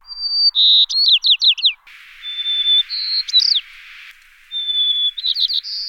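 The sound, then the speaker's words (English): A white-crowned sparrow sings three times in the open at about 13,000 feet on Mount Audubon in the Indian Peaks Wilderness, Colorado, each song a clear whistled opening note followed by a rapid buzzy trill of descending sweeps, fairly loud with a faint windy hiss behind. “You climbed to 13,000 feet on Mount Audubon in the Indian Peaks Wilderness to record the white-crowned sparrows.”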